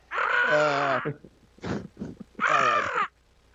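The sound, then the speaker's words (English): A person imitates a crow's caw with two long, loud, raspy calls that sag in pitch, separated by a few short breathy grunts. “That's a crow.”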